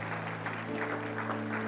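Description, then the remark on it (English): A church audience applauds steadily for the people who raised their hands, a dense wash of many hands clapping at a constant level with no voices standing out, while a low, sustained tonal hum runs underneath. “Can we clap about those hands?”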